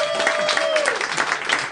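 A live audience claps steadily and fairly loudly for a couple of seconds, the dense applause filling the room, with a brief falling whistle cutting through near the start.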